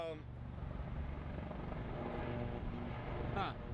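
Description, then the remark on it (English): Military helicopters roar overhead in a loud, steady thrum of rotor noise that fills the whole stretch, with a brief voice cutting in near the start and end. “Helicopters. Military helicopters.”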